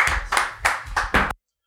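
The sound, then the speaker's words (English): A few people clap their hands together after a performance, about five quick, evenly spaced claps, then the sound stops abruptly into silence. No one speaks. “Everyone clap”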